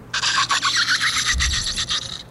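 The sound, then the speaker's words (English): A continuous harsh, rasping scrape of a bottle cap dragged across glass, bright and high-pitched with slight pulsing variations, lasting about two seconds with no talking. “That sounds like a bottle cap on glass.”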